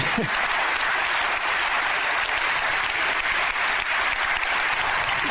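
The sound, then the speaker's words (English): Steady, dense applause from a crowd, many hands clapping rapidly in a continuous loud wash of crackling sound that holds level for several seconds without talk. “I don't know if I'd clap that fast.”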